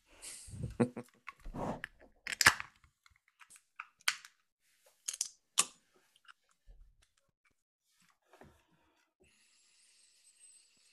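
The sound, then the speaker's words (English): A can being opened: a burst of clattering, scraping clicks with one sharp crack, then scattered faint ticks and taps trailing off into near silence. “That leaps out of the can a bit, doesn't it?”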